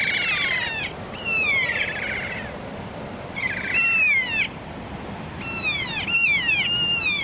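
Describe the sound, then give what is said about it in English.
Four birds call in loud, overlapping bursts of harsh, sweeping cries, coming in three clusters over a steady outdoor background, with no one talking. “Four birds around us at the moment.”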